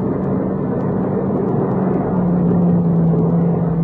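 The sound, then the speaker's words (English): A car drives past with a steady, loud engine and road roar, its low droning tone dipping slightly in pitch halfway through. No voices. “Well, he's going past, isn't he?”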